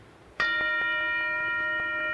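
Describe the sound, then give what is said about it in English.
A single meditation bell is struck once and rings out clearly, its bright, steady tone sustaining without fading for the rest of the moment, heard alone with no talking. “that you can be sitting there and you're all restless and tight and you can't wait till the bell to ring, and then you hear.”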